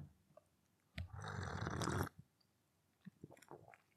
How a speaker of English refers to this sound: So anyway, I'm now going to have a quick sip of the tea.